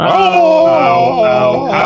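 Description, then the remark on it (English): Voices imitate howling together, holding a loud, wavering tone for about two seconds, with the pitch rising, sagging and swelling again before trailing off. “Can I get some howls?”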